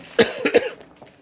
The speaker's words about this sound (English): Now I'm coughing. It's all the smoke from the bar.